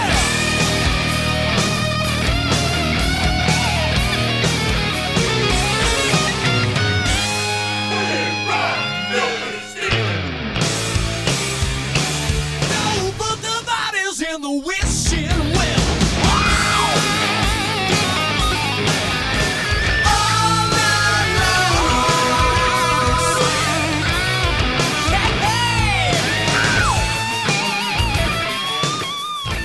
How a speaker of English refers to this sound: Look, it's rock and roll! And cue music.